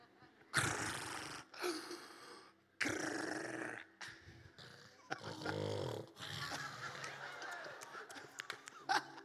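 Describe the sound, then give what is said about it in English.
Someone imitates snoring: a series of loud, rough, rasping snorts and gurgling breaths, repeated in uneven bursts with brief pauses between them. “Well, don't snore too much.”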